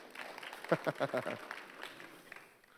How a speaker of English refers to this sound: I told him to clap there, so that's perfect.